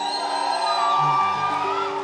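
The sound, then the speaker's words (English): A large audience cheers and screams loudly and continuously for about two seconds in response to the host asking them to scream, with sustained musical tones ringing underneath the roar. “Where are the wise people at? Come on, let me hear you scream.”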